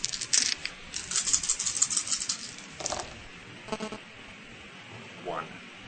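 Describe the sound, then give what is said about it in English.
Six dice, rolled for damage in a game, clatter and tumble across a tabletop in a dense burst of sharp clicks lasting a couple of seconds, then a few scattered taps as they settle, with faint voices. “And then 6 dice.”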